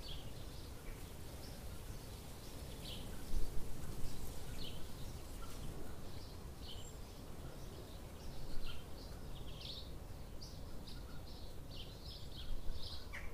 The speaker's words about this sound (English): Seemingly not yet exhausted from the pre-theatre performance, the birds continued to sing wherever we went. Occasionally accompanied by the backing vocals of sheep.